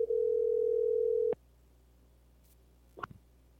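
A single steady telephone ringing tone sounds loudly for just over a second while a call is being placed, then cuts off abruptly, followed by near silence and a brief soft clatter.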